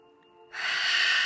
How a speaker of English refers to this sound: So one more time, breathing into your hands.